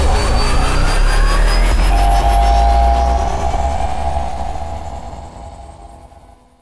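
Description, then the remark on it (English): A rocket blasts off with a loud, deep roar and a rising whine, holding strong for a few seconds before gradually fading away. No one speaks. “…, blasting off.”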